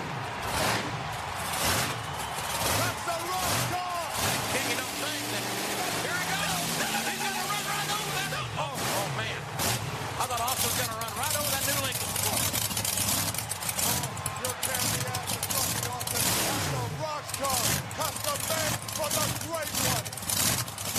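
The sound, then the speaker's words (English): The engine of The Rock's new $40,000 Lincoln rumbles steadily as the car backs up, partly buried under loud, continuous voices and crowd noise throughout. “$40,000 Lincoln there in the king. He's backed up.”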